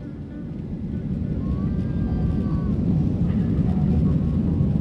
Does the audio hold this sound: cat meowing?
no